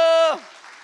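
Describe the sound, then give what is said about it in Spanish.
A loud, high-pitched shouted voice calls for applause in Spanish and cuts off after a moment, and a crowd's applause follows as a softer, steady wash of clapping that continues to the end. “¡A ver ese aplauso!”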